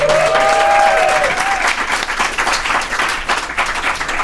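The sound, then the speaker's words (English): A burst of audience applause, dense rapid clapping that stays loud and steady throughout, with a brief whistle-like tone sliding at the start. “Let's hear a round of applause for that.”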